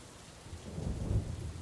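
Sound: rain falling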